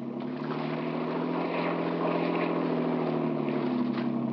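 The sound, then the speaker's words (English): A motorboat engine drones steadily at full throttle as the boat chases another boat, a loud, continuous hum with a rough, buzzing edge and a constant pitch, unbroken throughout, with no voices. “Get more speed out of this. I can't, Dan.”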